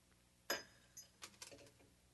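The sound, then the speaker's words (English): A glass gets knocked with one sharp, bright clink that rings briefly, followed by a few softer, quicker taps and rattles as it settles. No voices. “Ooh, sorry about that. Not going to break your glass”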